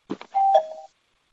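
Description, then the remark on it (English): A doorbell rings once: a short clattering burst, then a clear two-tone electronic chime, a steady high note dropping to a slightly lower one, ending abruptly after under a second. “Can we pause real quick? Yeah, no problem. Yeah, there's somebody at the door.”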